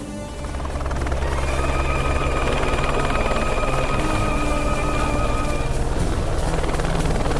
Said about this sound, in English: Up ahead! The helicopter is landing. Put down here. We'll go in on foot.